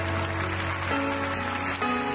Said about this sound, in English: Ooh, clap your hands one more time.